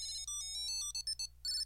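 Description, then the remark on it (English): A bright electronic ringtone melody of quick, chiming tones hopping up and down in pitch, played alone over a low steady hum: the alert tune of a Tile tracker, used to find lost things like keys or a wallet. “That beautiful tune. That is the glorious sound of me finding the thing I lost.”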